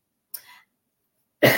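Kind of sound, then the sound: human body sound, cough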